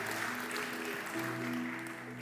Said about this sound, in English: Have you ever done something in your life that after the fact you realize was real stupid? You can clap for that.